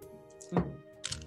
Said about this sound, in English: Nice sounds of dice.